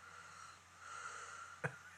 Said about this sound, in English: Is this you snoring? You sound like a monster.